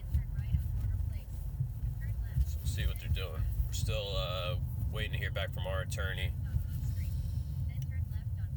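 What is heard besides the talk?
car interior road noise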